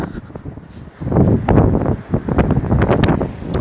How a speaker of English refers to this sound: Fuck, it's really windy.